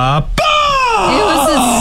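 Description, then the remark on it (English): A voice mimics the speaker's own very aggressive screaming sneeze: a short strained cry, a sharp catch, then a loud, drawn-out shriek sliding downward in pitch, alone. “It was a scream sneeze.”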